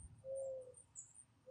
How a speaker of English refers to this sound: Just sit and listen to the birds. There's an owl somewhere. I can hear them. Just hear the crickets. And the birds chirping off in the distance.